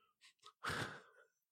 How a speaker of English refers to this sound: It's embarrassing, huh? It's riveting what I'm talking about. You were literally snoring into the microphone. Dude, it gets hard. You fell asleep.